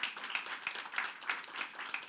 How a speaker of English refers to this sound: I'll tell her you clap for her.